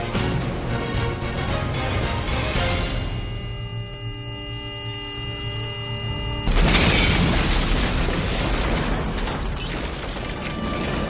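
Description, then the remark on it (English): A steady electronic whine holds for a few seconds, then a loud explosion bursts in, followed by a sustained roaring rumble and crackling debris. No one speaks. “An explosion.”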